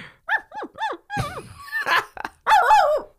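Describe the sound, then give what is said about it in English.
A voice convincingly imitates a dog, giving a quick run of high whimpering yelps followed by rougher, louder barks and whines, loud with no talking. “That's a pretty good dog. There's a real dog in this studio.”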